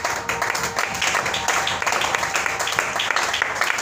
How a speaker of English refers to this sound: And I thank God for that. We clap hand for the grace in the house.